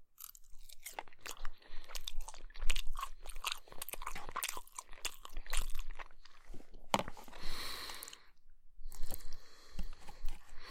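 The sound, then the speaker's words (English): Moist chewing and crunching on chicken, with irregular bursts of crisp crackle and wet mouth sounds over about ten seconds, no talking. “I think I'm gonna have a little bit more chicken.”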